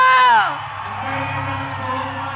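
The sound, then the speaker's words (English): A loud crowd of voices in a church erupts in whooping and shouting, one high yell sliding downward at the start, then a sustained roar of many people calling out together. “Are you shouting in this house?”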